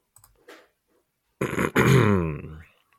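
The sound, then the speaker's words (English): A loud throat clearing by a man: a short rough burst followed by a longer, gravelly voiced rumble, after a few faint clicks and breaths in otherwise quiet surroundings. “clear his throat to prepare for this.”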